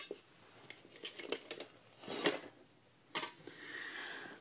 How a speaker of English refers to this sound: Soon after arising, I saw that it was the diploma. I have yet to touch it, so I'm going to touch it. There's large shards of glass, frame broken.